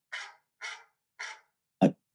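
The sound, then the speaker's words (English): A dog barks four times in quick succession, three even, rough woofs followed by a sharper, punchier final bark, alone with no talking. “But what we are going to do is when the dog barks, that's when we stop talking about the film.”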